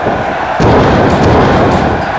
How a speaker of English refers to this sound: It looks like it backfired. Our champs have run into each other, knocking themselves out.